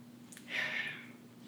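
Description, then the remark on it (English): A single breathy inhale through the nose, a soft airy sniff of a drink before tasting it, lasting under a second, quiet and alone with no talking. “I had to sniff it first.”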